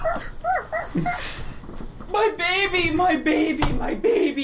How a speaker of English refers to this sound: Dogs start barking.